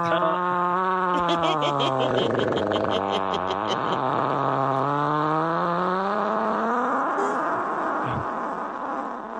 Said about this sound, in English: I think some of our listeners are going to have a hard time with that fart audio sound. It's just audio. It's not like you got to smell it.